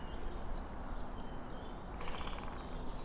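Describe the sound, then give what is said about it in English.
Faint woodpecker drumming in early spring, two woodpeckers answering each other: a brief rapid roll of knocks rising over steady outdoor background hiss, with a few thin bird calls scattered through. “Now, a woodpecker somewhere. Yeah. Quite soft woodpeckering.”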